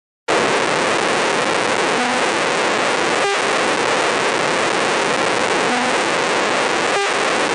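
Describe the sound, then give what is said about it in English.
A steady, loud static-like hiss of brain action potentials, recorded in response to high, low and medium tones and played through speakers, with a few faint, brief tonal blips surfacing in a repeating pattern beneath the noise. No one speaks. “So you didn't hear any response to that first tone, but you did hear a response to the second too, and it sounded like that frequency.”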